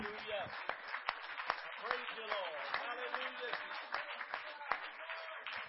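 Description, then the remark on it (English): An audience claps their hands in praise to the Lord in a loose, uneven rhythm, sharp claps cutting through a steady murmur of many voices. “Let's clap our hands to the Lord again.”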